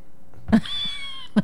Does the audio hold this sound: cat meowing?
yes